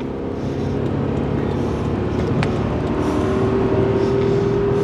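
A car engine roars steadily and loudly, with a droning whine building toward the end as the driver accelerates to pass a slower car on the left. No one speaks.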